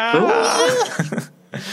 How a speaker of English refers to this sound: This is where we need the clip of the goat screaming like a human.